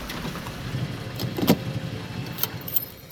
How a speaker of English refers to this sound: Park the car.